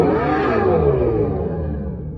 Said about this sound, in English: insert sound of Dodge Banshee here.